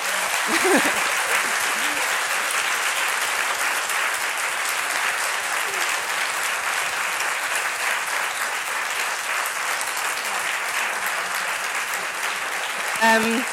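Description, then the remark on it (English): Sustained audience applause at Arnolfini to thank the morning's guests, a dense steady patter of many hands clapping at an even, loud level for over ten seconds, with a few faint voices mixed in near the start and end. “And can you join me in a warm round of applause to thank them?”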